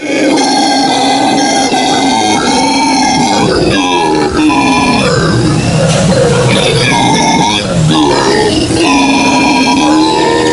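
Loud, throaty monkey calls fill the whole stretch, harmonically rich hoots and groans that rise and fall in overlapping bursts, with no one speaking.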